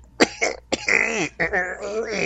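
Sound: throat clearing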